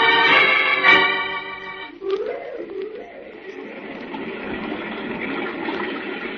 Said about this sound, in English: What do you think of Silver Falls? Oh, the waterfall is beautiful,